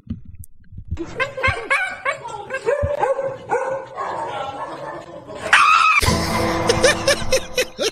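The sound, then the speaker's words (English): A dog barks and yips in a rapid string of short, high calls, close by, before the sound swells into a louder, noisier burst of barking near the end. “So mine is, it's got a dog involved.”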